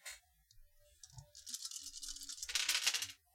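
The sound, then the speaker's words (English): Seven dice are rolled for a resources roll. They rattle and clatter in bursts of bright, dense clicking, building to a louder final tumble across a hard surface before stopping abruptly. “Okay, go ahead and give me a resources roll at 7, since you have -2.”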